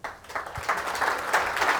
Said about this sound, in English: Okay, I got some applause in the room.